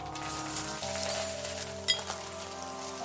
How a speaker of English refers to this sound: Tad's eyes shifted towards the vase, and he almost passed out again at the sight of hundreds of gold coins pouring out of it. The sound he was hearing was from coins forming a pile on the worn carpet in front of the counter.